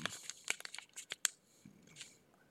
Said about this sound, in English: I have my trusty Buco News here, so let me flip through the pages and pick one of these bad boys out for you.